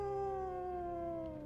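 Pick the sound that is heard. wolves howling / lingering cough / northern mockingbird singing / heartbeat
wolves howling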